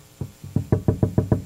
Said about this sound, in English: And then you got to knock. You got to knock.